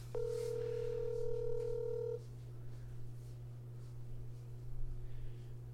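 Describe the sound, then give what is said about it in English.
A single telephone ringing tone as a call is placed to a man to see if he is home, a steady electronic burst of about two seconds, heard through a phone line, followed by quiet with a constant low hum underneath. “Let's see if he's home. Maybe he died. He has me saved under his phone under Pizza Hut.”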